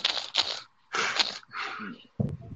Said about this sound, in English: I swear that sounds like somebody's typing. It's a fidget spinner. It's a fidget spinner. I'm telling you.